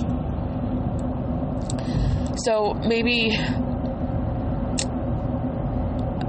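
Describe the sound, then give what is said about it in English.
Steady low rumble of a car in motion, heard from inside the cabin as it turns a corner past a truck, continuing throughout with a brief stretch of someone speaking partway through. “I lost my train of thought there as I was trying to turn the corner and not hit this truck.”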